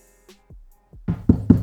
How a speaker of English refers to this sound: Real talk, knock on wood.